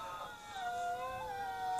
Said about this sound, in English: I mean, that's not a dog dying. Don't we, worry. Like recording in Algonquin Park, and a pack of wolves trailing behind us. That's a pack of wolves, and that's what you're gonna hear a lot over the fucking speakers in AT&T this weekend.